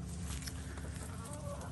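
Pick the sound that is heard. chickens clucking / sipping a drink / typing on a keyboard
chickens clucking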